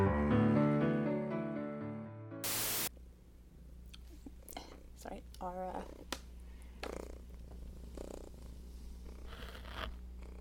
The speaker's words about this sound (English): Self-appointed mixtape mascot has taken it upon herself to come and purr extremely loudly into my microphone, so we just extract her from the desk.